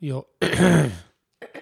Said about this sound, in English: Hit the cough button, for God's sake.